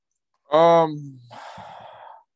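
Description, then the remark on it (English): A parrot lets out a single nasal, downward-sliding call, followed by a raspy, breathy chatter. Both sounds are fairly loud, with no human talk alongside. “Parrot, do you what do you think the score is going to be?”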